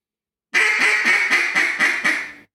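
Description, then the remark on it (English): A series of six or seven rapid, raspy coarse hen quacks blown on a duck call, loud, running together in a steady descending rhythm with no talking. “Now what's the difference in your tongue position or your mouth cavity on the coarse?”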